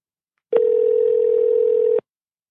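A single steady telephone line tone, a clean unbroken hum lasting about a second and a half, clicking on and off abruptly, with no voices, as a call is placed to the National Research Council time line in Ottawa, Canada.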